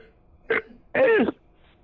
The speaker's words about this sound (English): I just burped. Do you like burps?